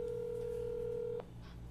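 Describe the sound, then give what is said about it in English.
A telephone keypad tone, made while calling the Party Town store, sounds as one steady, clear beep for just over a second, then cuts off abruptly, leaving a faint low hum behind it. No one speaks. “Yeah, let me get him on the phone.”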